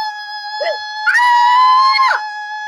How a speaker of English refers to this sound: I scared the dog. Sorry.